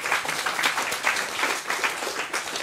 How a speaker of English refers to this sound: And so I would give you a round of applause, firstly and foremost. So thank you.